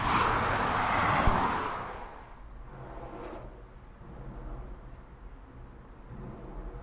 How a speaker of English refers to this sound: So in search of somewhere quieter, we've got somewhere quieter, a bit more echoey. We're right underneath the A46. Quite an interesting sound as the cars go over. You don't feel entirely safe, but you know this is well built.